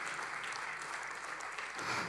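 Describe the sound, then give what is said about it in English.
An audience claps together in a dense, continuous burst of applause, a steady wash of overlapping hand claps that holds at an even level throughout, with no voices heard. “I thought that deserved a round of applause as well.”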